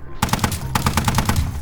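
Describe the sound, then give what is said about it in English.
Rapid machine gun fire rattles out in two loud, evenly spaced strings of sharp shots, separated by a brief pause, over a low rumbling background. “Hey, no, we only have 15 minutes of sustained fire in that thing.”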